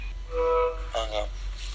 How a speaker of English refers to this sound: So, I'll give him a call now and we'll see how he's getting on. I hope he answers. See, different dial tone because we're calling international.